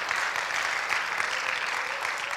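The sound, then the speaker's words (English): An audience claps together in praise to Jesus Christ, a dense, steady wash of many hands applauding at once, bright and sustained across the whole moment with no voices rising above it. “Why don't we give a hand clap of praise to Jesus Christ?”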